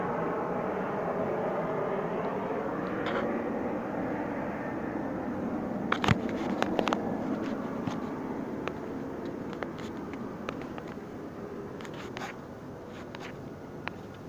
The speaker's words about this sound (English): All right, just 30 seconds later, after they thought I turned it off, plane flying right over. Southwest Airlines plane.